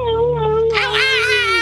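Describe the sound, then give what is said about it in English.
A caller on the phone imitates a dog with one loud, sustained howl that wavers slightly in pitch and grows brighter and more strained partway through, lasting about a second and a half. “Yeah, I fucking love making that dog noise with you, dude.”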